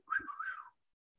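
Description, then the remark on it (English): A person whistles a short, bird-like phrase imitating a whip-poor-will, with a wavering, mid-pitched tone that rises and dips over less than a second before stopping. “what is a Whippoorwill? It's a bird. And they make a sound.”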